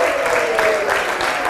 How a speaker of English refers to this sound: Okay, round of applause for the girls.